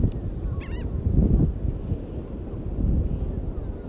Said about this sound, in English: Obviously, I'm at the beach. It's beautiful out. It's 84 degrees. The birds is chirping. Spring has started.